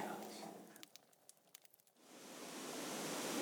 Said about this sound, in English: The rumble of water in the background.